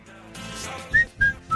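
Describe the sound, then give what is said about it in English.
A person whistles a short tune: a few clear, pure tones, with breathy air noise at the start and two quick rising notes near the end. “Okay, let me hear your whistle.”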